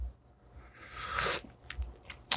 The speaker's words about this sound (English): As much shit as I talk about coffee and here I am sipping it.